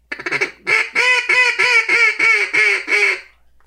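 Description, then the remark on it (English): A duck call blown to imitate a mallard hen: a quick stuttering lead-in, then a steady run of about seven loud, raspy quacks, each slightly falling in pitch, with no talking. “Well, you got one duck under your belt. Of course, you had the mallard hen.”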